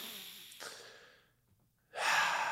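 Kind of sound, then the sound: human body sound, yawn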